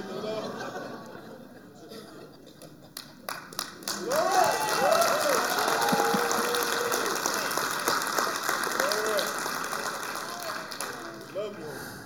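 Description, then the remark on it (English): Scattered claps during a sermon quickly swell into loud, sustained crowd applause, with excited voices calling out and cheering over the steady clapping until it starts to ease off near the end. “If that's the last clap you would give before you die, would that be it?”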